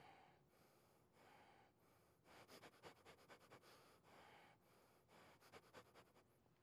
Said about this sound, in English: Constantly changing, no pattern to settle down, right? That's constantly changing. That is the rapid breathing or chaotic breathing, right?